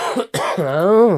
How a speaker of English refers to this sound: Alrighty, everybody. I need to have a bit of a coughing fit.